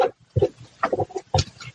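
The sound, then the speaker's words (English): Rough, scratchy scribbling of a pen on a piece of paper as someone writes down a phone number, in a quick series of uneven strokes, some louder and fuller than others, with short pauses between bursts and no talking. “I can hear you scribbling.”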